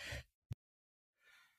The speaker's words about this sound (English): I might sneeze here.